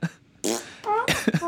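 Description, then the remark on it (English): A voice makes a string of fart-like noises, several short buzzy, sputtering bursts in quick succession, fairly loud, with no other talk. “Every time you shoot, it makes fart sounds.”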